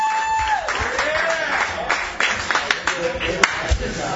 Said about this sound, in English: Wow, thanks for clapping. I didn't expect that.